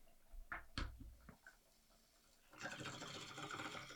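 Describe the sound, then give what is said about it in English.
A few soft knocks and taps, then a steady gurgling as water bubbles through a water pipe during a pull, continuing for about a second and a half with no talking. “See, perfect amount of water. You're right. Get a thumpy chug in there.”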